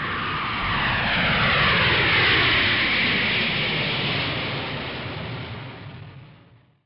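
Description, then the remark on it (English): A loud, continuous airplane engine roar swells to a peak, then gradually fades away, like an aircraft passing overhead. No voices are present. “We stepped off the plane in Panama and everything was great.”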